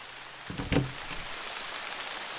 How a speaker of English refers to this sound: when suddenly, a torrential downpour came out of nowhere. It was like all of a sudden it was raining misery all over my house.